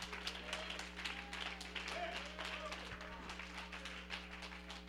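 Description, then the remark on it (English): A church audience claps hands in worship, a dense, steady patter of overlapping claps lasting throughout, moderately loud, with indistinct voices and a low hum underneath. “Oh, somebody clap your hands and worship the Lord.”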